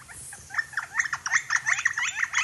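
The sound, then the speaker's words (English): A northern flicker calls in a quick, even series of bright, nasal notes, repeated about eight times over a couple of seconds, clear above a faint low background hum. “And then if you listen closely, you can say it's almost saying flicker, flicker, flicker, right?”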